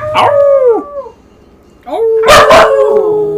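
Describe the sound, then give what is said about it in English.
A dog named Sugar lets out two loud, drawn-out howls separated by a brief pause, the second one punctuated by a couple of sharp, yelping barks. “She unfortunately doesn't howl on cue.”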